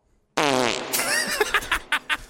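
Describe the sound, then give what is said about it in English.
A loud fart begins with a long buzzy rip, then trails off into a series of short sputtering bursts. No talking accompanies it. “That was my fat mom farting on the other line.”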